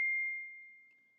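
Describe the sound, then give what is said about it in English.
A single bell ding rings out clearly with a sharp strike, then a pure tone slowly fades over about a second. No voices accompany it. “That bell means... time is over.”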